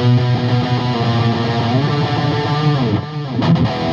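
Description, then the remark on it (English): A distorted electric guitar plays sustained chords through a Synergy amp on a dirty rhythm patch with Strymon echo, giving a smeared, repeating echo tail, loud, with no voices over it. “And usually I have a patch with a bit of echo.”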